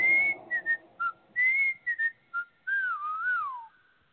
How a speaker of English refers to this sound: Oh, I hated that whistle. That whistle used to piss me off.